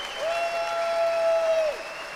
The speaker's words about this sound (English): So how about the biggest round of applause possible? Because this show doesn't exist without him.